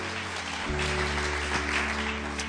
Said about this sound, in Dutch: Laten de band een geweldig applaus geven. So let's give the band a great applause.